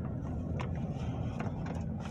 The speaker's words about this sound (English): Is that a drill truck? It is a drill truck. How's a drill truck going? It's not our drill truck.